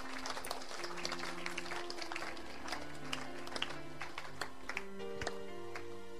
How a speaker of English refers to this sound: Those of you who are not clapping, I'm looking at you.